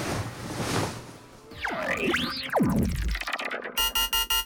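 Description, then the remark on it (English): A hazy whoosh and swooping electronic tones give way to a rapid, steady run of loud electronic alarm beeps, evenly pulsed, continuing until the end. “eyes fluttered open to an incessant beeping sound.”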